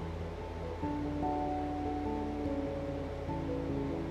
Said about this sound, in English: You hear sounds of the water moving, but it's muted. It's a sound like no other. It's peaceful.